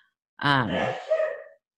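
A single sneeze, starting with a sharp voiced intake and breaking into a hissy, breathy burst that trails off after about a second. No one speaks.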